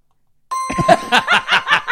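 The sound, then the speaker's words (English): A single bright bell chime rings out and hangs in the air, quickly joined by bursts of rhythmic laughter over its fading tone. “I was waiting for the bell.”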